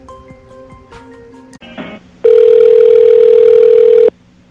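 A telephone ringing on an outgoing call to TA Truck Service: a few soft tones, then one loud, steady ring lasting about two seconds before cutting off, with no talking.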